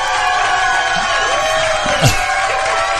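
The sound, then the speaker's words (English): A large crowd cheers and whoops loudly and continuously as a guest is welcomed, a dense wall of overlapping shouts and yells with a brief louder burst near the end. “Ladies and gentlemen, please welcome Gayla Johnson. Crowd goes wild.”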